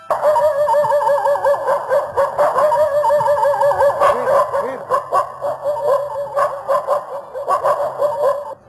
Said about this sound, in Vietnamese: Hai con chó vàng nằm liêm chim tại cửa, thấy dàn khách lạ thì tuôn ra mà sủa.